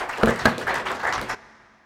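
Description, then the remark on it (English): A crowd applauds a comedian coming to the stage in a dense burst of clapping, fairly loud and steady, that stops abruptly after about a second, leaving a faint room echo. No one speaks. “Everyone, please clap real loud right now for John Toll”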